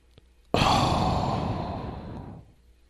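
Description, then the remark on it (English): A person imitates heavy breathing down a phone line with a single loud, raspy exhale that bursts in abruptly, lasts about two seconds, and slowly fades, with no talking. “You hear that sound, you're in deep crap in whatever relationship, the person who's making the breath sound, you don't want to hear that.”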